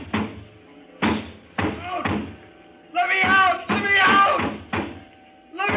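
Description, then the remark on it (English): A fist pounds heavily on a door in a string of loud, uneven thumps, while a voice cries out over the later blows. “I went to the door, banged on it.”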